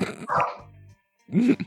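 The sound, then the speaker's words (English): Two loud dog barks separated by a brief low growl-like rumble, with a short silent gap before the second, deeper bark. “Dealing with fucking barking dogs the whole time, too.”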